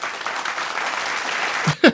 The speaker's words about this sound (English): Every time we say it today, you have to have the applause.